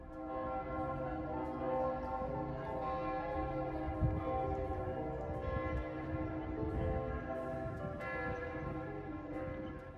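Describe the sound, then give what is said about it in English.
Church bells in Zurich, Switzerland ring continuously in a rich, overlapping peal, their tones blending into a sustained resonant wash with strikes layered over one another throughout, fairly loud and without any voices. “Okay, now let's leave Switzerland by listening to the church bells in Zurich.”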